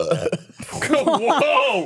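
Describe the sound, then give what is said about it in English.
A loud burp rumbles out in a couple of bursts, then stretches into a long, voiced belch with a wavering, almost vocal tone. “I got a burp ready because I didn't think I'd have to repeat myself.”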